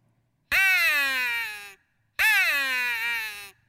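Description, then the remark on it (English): Two long, loud, raspy raven caws from a hand-blown hunting call used to call in ravens when raven hunting, each about a second long with a brief pause between, with no talking. “I call me in some ravens.”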